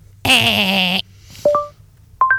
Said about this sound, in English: No, that's the sound Google makes. Wait, that's the sound? Yes, if you do a Google search on your phone.